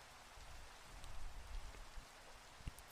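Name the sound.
rain falling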